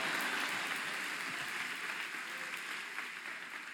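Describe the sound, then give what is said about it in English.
An audience at a church called Live claps together in a steady wash of applause, dense and continuous, holding fairly loud before easing off slightly toward the end, with no one speaking over it. “Clap your hands and say, I'm in the right house this morning.”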